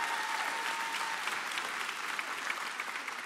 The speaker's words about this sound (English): We have people worshiping from Barbuda, from South Africa, and from Thailand. Can you give them a round of applause real quick?